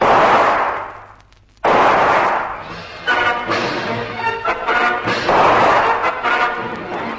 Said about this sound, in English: Von Stahlheim whips his gun out and blazes into the mangroves.